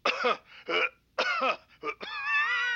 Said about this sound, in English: I mean, cough twice if you are. Like this.